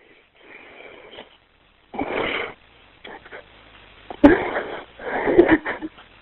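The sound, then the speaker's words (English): A woman's labored, wheezy breathing comes in several ragged bursts of noisy inhales and exhales, moderately loud, separated by short quiet gaps. “But until then, we have to keep our eye on her breathing, okay?”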